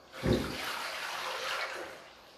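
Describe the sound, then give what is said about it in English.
Water is poured from a pitcher into a basin in one steady splashing stream lasting about two seconds, starting with a heavier gush and then trailing off. It is clear, with no talking. “And Jesus took the pitcher of water and he dumped it into a basin.”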